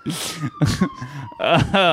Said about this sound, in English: Speaking of which, sirens are playing. Yeah. They came for your accident. They're finally here. Yeah.